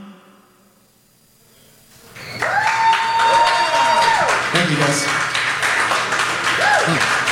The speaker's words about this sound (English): There's something that's never happened on this show. Live, studio, applause.